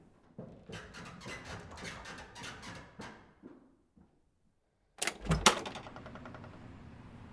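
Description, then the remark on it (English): A quick run of rapid clicks and taps, then after a brief pause a loud clunk and rattling creak as a door is pulled open, trailing off into a faint hiss. “I must get the door.”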